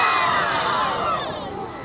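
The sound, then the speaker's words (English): A large crowd cheering and shouting, a dense, sustained roar of many voices with high-pitched yells layered on top, steady and loud throughout, easing slightly toward the end. People at the back are still celebrating as news that Martin Luther King was shot and killed in Memphis, Tennessee spreads through the crowd. “The people at the back of the crowd were still celebrating, so you didn't know.”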